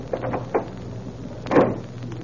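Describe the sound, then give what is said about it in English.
A front door opens with a soft latch click as someone comes in, then swings shut about a second later with a louder, fuller thump and rattle, with no voices. “I'm going to go on out and come in that front door and show you just what happened.”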